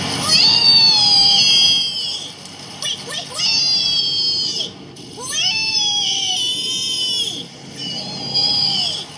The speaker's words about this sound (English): In fact, Biggs Pigs are so happy that they even gleefully squeal, wee, wee, wee, all the way home. Don't believe us? Well, just listen to this.